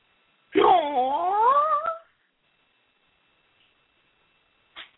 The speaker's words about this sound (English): Oh, you mean acting like a baby. Oh. She just cooed.